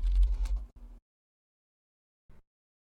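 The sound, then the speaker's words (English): Computer keyboard typing by someone sending messages during a webcam call: a quick, dense flurry of clicking keystrokes for about a second, then silence before a brief final burst of taps. “Sorry, I was waiting for you to finish typing.”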